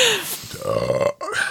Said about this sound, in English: If we're allowed to burp, I could have done that a million times. We're allowed to burp. You're allowed to.